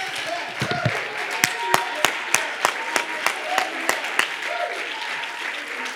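An audience claps hands together in a steady, brisk rhythm of sharp, loud claps, with a wash of crowd noise and scattered voices underneath.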